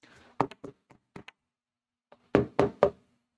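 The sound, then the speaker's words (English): Knocking on a door: a quick trio of knocks, a few lighter taps, then after a short pause three louder, firm knocks. No voices. “Someone's knocking on the door, which represents Christ.”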